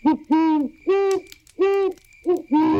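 An owl hoots loudly, about six clear, tonal calls in quick succession, some short and some drawn out, in an uneven rhythm with no one talking.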